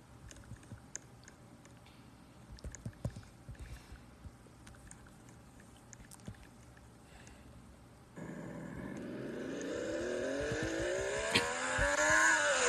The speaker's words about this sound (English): Hey, so buckle up, everyone. Tighten those belts tight, and we're going to get rolling. Well, the cars are going to roll back out from the garage.